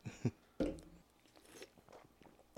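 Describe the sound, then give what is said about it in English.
Someone takes a drink and swallows: a few loud, wet gulping bursts early on, followed by quieter mouth and throat sounds, with no talking. “let's have a drink real quick before we get into this.”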